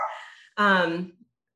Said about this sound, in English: sorry, my dog. She is. Lucy, I think she should be fine. It's just a delivery truck.